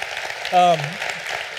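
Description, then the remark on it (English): Steady crowd applause for standing veterans fills the whole moment, a dense crackle of clapping, with a brief voiced cheer rising out of it near the middle. “Most veterans I know don't want the applause, but thank you.”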